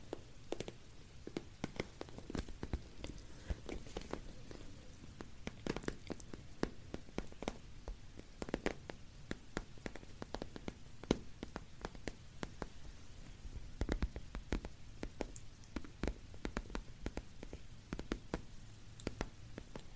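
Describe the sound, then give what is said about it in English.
Steady artificial vinyl record crackle, a dense scatter of irregular pops and ticks over a soft low hum, quiet, with no voices. “I believe it's because it's the sound of vinyl, and it sounds a bit like raindrops as well.”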